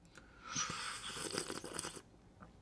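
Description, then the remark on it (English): A loud slurping sip of sherry taken during a toast, a noisy airy draw lasting about a second and a half before cutting off abruptly, with no talking. “I noticed that you sip your sherry pretty loud there.”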